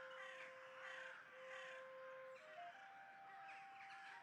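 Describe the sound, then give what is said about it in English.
Several crows caw repeatedly in harsh, rasping bursts over a field, layered over a steady, sustained tonal drone that shifts pitch partway through; no one speaks. “The outer field is a feast for the crows.”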